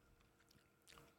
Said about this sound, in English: I just went in for a sip of this.